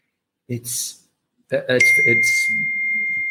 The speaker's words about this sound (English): It's sorry, hold on. My phone is binging.